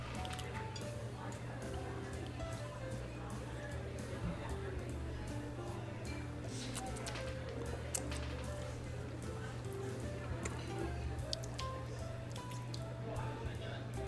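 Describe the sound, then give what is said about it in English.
Small drops of water trickle and drip into a glass of high-proof whiskey, quiet and irregular, over a steady low hum and faint background murmur. “I'm gonna have one more sip, and I'm gonna put a little water in this.”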